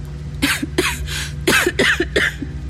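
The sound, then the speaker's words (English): A run of about six harsh, raspy coughs in a cave in quick, uneven bursts, fairly loud, with a low steady hum underneath and no talking. “Even a little whisper made me start coughing.”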